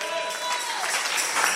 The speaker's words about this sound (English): Why are you people looking at? Can't you clap a little?